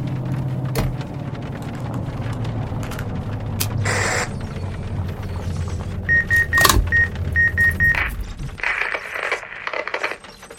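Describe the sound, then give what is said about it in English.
A car engine rumbles steadily as the car pulls over to the roadside, then a few sharp clicks and a repeating electronic chime sound before the engine cuts out, leaving a quieter hiss as the vehicle comes to rest. “Pull over here.”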